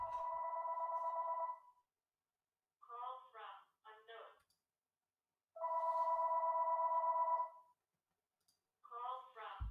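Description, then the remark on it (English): A phone ringtone repeats: a steady, buzzing two-second tone alternates with short warbling melodic bursts, cycling twice at moderate volume with brief silences between. “Can't even get to that phone because gotta get that shit closer to me.”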